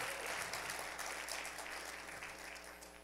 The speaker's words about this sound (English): Come on, somebody give God praise for that reading of the word. Oh, you can do better than that. Clap like your hands are yours.